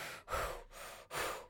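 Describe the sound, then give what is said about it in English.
Heavy breathing right up against the microphone: loud, airy breaths in and out in a quick, steady rhythm, with no talking. “Stop breathing my air.”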